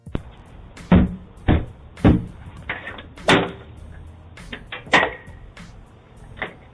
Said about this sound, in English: Little boy, you better get your ass from off my porch beating on my door like this. I will call the police. You need to leave. Don't you ever beat on my door like that.